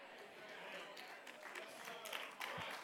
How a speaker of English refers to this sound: It's kind of a nervous clap, but it's, we level them in.